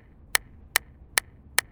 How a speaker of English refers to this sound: Suddenly, Miss Anderson broke the silence with a loud clapping of her hands.